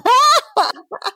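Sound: sneeze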